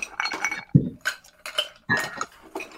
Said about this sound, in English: do you want to put the ice in the mixer first, or do you want to put the ice in second? Yes. Let's ice put first. The ice in the mixer first. So that we're not splashing all over our desk.